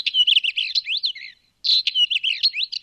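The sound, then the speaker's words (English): A Northern Wheatear songbird sings in rapid, scratchy bursts of high chirps and whistles, two phrases separated by a short pause, clear with no talking. “That's what the little songbird sounds like. It's the Northern Wheatear, rather.”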